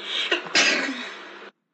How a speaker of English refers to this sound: And before he knew it, he had a gigantic sneeze.